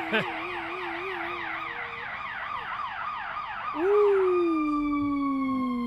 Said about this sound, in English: Ooh. That's a long one. It's an ambulance.